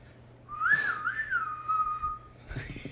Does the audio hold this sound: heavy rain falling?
no